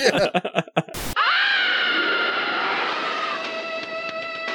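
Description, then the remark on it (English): A few quick choppy vocal bursts and a sharp crash give way to a long, loud, piercing stock-sound-effect scream that begins a TV series theme song, holding its strained pitch for several seconds, harsh and grating, with no talking over it. “Yeah, I have to stop myself from doing the insane scream that begins the theme song.”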